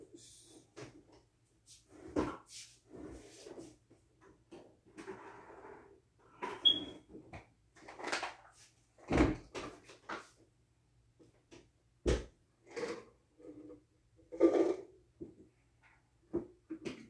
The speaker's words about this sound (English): But yeah, hold on. Close the door.